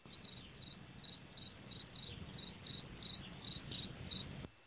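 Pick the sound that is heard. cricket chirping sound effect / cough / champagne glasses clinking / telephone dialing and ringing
cricket chirping sound effect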